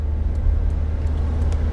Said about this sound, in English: This semi-truck going slower than my fucking molasses.